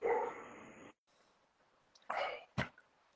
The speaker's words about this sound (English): What's wrong? My dog's in the house losing his shit.